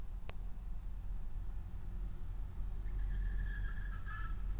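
vehicle, car approaching on road

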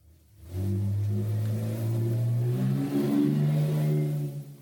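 vehicle, car engine revving outside

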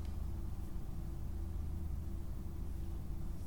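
vehicle, car passing by outside

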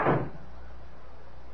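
household object, door being closed

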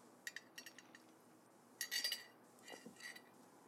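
household object, sipping water

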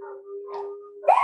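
animal, dogs barking

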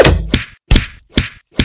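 impact, hand slapping a person

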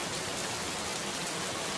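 nature, rain falling

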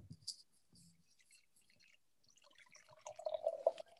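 food or drink, drink being poured

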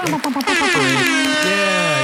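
signal or alarm, air horn blast

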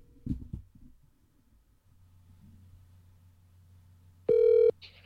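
signal or alarm, telephone call ringing

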